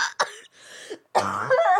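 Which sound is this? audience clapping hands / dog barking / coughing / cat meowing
coughing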